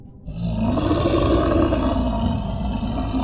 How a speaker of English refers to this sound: The monster's face was twisted with rage, its eyes wild and unfocused, mucus and saliva dripping from its lips. Gross. As it roared and lunged towards her.